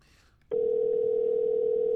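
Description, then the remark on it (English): A steady electronic phone tone switches on halfway through and holds loud and unbroken to the end, like a ringback heard while an outgoing call connects. Faint voices come just before it. “All right, let's just take this one more call, and then I guess we can get out of here if we're done.”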